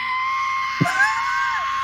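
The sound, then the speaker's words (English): A loud rock-and-roll style scream, high and raspy, held steadily for about two seconds with a slight waver in pitch and a brief low thump midway through. “That is a great rock and roll scream.”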